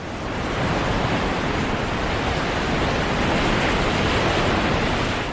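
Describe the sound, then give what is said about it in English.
A steady, full roar of surf crashing continuously on the beach, loud, with no distinct breaks between waves and no voices. “They say for a lot of people, the sound of waves crashing on the beach just make them happy.”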